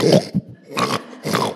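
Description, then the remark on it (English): A voice imitates a pig, making three rough, snorting grunts in an uneven rhythm, each one short, raspy and fairly loud, with brief pauses between them. “And he saw a pig is trying to eat something.”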